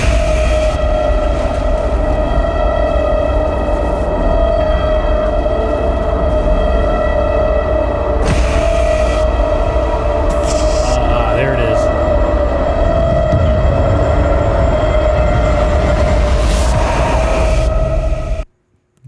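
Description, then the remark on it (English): A loud, ominous movie-trailer rumble: a deep, sustained roar layered with steady droning tones and brief swells, building tension for nearly twenty seconds before cutting off abruptly. “The only way you'll know something is scary and bad and that's going to happen in the trailer is by hearing this.”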